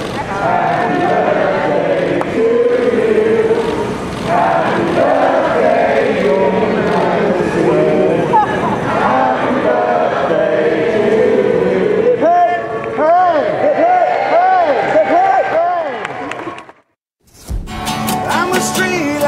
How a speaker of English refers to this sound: as she left church, the waiting crowd sang her happy birthday. Happy birthday to you.